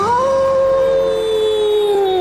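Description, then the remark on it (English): A werewolf howls in a GEICO insurance advert, one long, loud, sustained cry that rises briefly, then glides slowly downward in pitch, heard alone without any talking. “My goodness, I am tired of being known only as the guy who turns into a werewolf at the full moon.”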